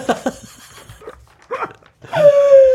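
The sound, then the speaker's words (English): A person imitates a dog up close: a couple of quick yapping barks and breathy panting, ending in a long, high whining note that slowly falls in pitch. “And I go round local children's hospices barking at them.”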